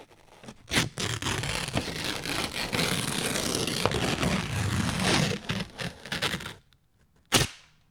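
Paper is ripped up for several seconds, a loud crackling tear with sharp snaps at the start and a final quick rip after a brief pause. No one speaks.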